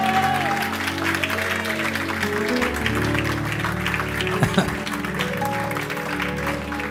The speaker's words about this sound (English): Somebody by faith, clap your hands and receive it right now.